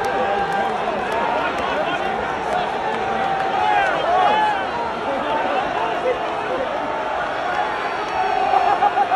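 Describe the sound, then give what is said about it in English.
A football stadium crowd roars continuously as a player starts to walk off the field, a dense wash of cheering and shouting voices with scattered whistles, holding loud throughout and swelling slightly near the end. “So, and the crowd's getting into it right here.”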